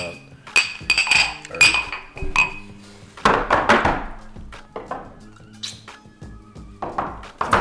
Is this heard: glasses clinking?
yes